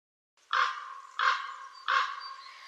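A crow caws three times in steady succession, each call harsh and loud, with a short raspy tail trailing off between them and no one talking.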